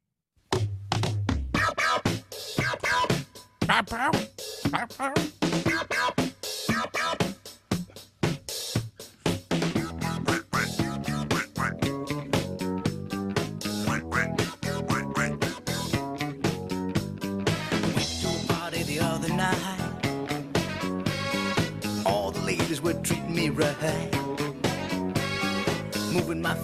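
A bouncy 1970s disco novelty chart hit plays loud and continuous, with a steady thumping dance beat and a quacking, duck-like voice singing over the busy backing.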